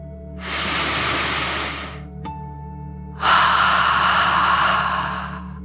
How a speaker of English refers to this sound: As you imagine your whole body lightly floating in the water, let's take one more deep dragon breath, in and out.